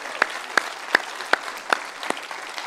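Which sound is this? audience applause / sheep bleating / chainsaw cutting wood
audience applause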